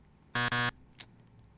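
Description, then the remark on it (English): A harsh, loud game-show wrong-answer buzzer sounds in two quick back-to-back blasts, rich and raspy, then cuts off into quiet with a faint brief noise afterward. “Don't make me go hit that buzzer one more time.”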